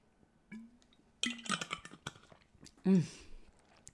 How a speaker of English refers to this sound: I'm just going to have a quick drink.